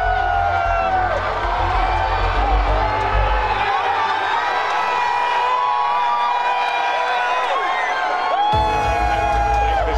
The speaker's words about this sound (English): Okay, here we go. Oh, listen to the cheer. I think it says a lot. Let's listen for a moment.